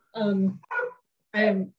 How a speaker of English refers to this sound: Sorry, my dogs are barking and they're not happy right now.